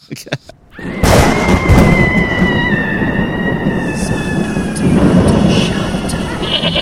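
A loud, sustained rumble of thunder bursts in after a second of near-quiet and rolls on steadily to the end, with a thin high whistling tone drifting over the roar.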